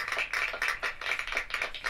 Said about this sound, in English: Aren't you impressed they trained the cats to clap? Yeah, it was pretty impressive. I don't know. Let's hear just the cats.